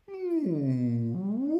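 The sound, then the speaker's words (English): A human voice imitates a whale call: a single loud, sustained moan lasting over a second that slides down in pitch, holds low, then rises again. “That's my impression of a whale.”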